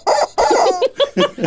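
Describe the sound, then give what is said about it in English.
A squeezed red rubber chicken toy, held in the hand, lets out a quick run of loud, squawky clucks, about five or six bursts in rapid, uneven succession with no talking. “It's red chicken. What's this chicken all about? I don't want you to squeeze it and find out.”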